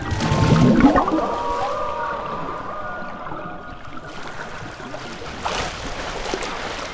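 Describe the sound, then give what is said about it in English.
Muffled underwater ambience in a four-lane swimming pool, a continuous wash of bubbling and churning water with faint steady whining tones running through it, fairly even in loudness throughout. “But every time I get into the water and down under the surface, I am transformed.”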